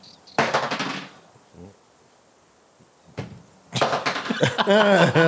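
A handful of dice clatters onto the floor in a quick burst of rattling knocks, then one sharp tap, followed by a longer scattering clatter as people react loudly over it.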